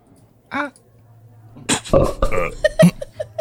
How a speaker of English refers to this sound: plus our signature belching sounds that I hope you're familiar with. And these are the ratings. 1, that sucks, give me anything but a bud. 2, was that a belch?